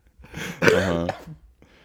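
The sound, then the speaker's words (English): A single fairly loud cough with a harsh burst and a brief voiced tail, followed by quiet; no one speaks. “I didn't mean to cough.”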